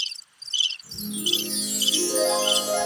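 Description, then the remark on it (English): High, pulsing cricket chirps repeat in short bursts as a sound effect. After a moment a sustained, rising musical tone swells underneath while the chirping continues. No one speaks. “Those were magical crickets.”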